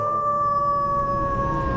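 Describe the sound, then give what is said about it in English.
A long, steady howl like a wolf's in a Halloween promo for Hound Radio, one sustained tone that sinks slightly in pitch, heard alone and fairly loud with a low rumble beneath it. “For Halloween, Hound Radio is channeling our inner wolf.”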